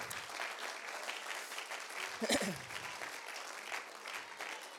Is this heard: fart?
no